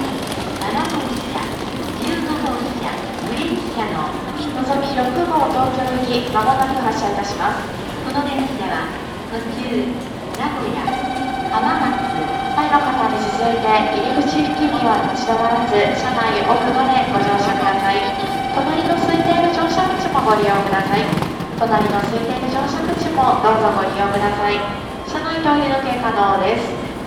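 A busy Shinkansen platform at Kyoto Station, Japan: steady crowd chatter and rumbling, with a sustained whining tone of a train or announcement chime hanging in the air for several seconds amid continuous station bustle, as a Nozomi train boards and its doors close.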